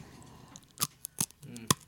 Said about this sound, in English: I can't hear anything over you chewing on those pretzels. How are the pretzels? Really obnoxious.